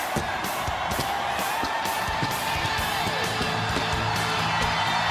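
A large crowd at a WCW professional wrestling pay-per-view stands, roars and cheers continuously as the Hulkster becomes WCW Heavyweight Champion of the World, with scattered whoops and yells rising above a dense, steady wall of noise that stays loud throughout.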